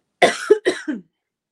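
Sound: throat clearing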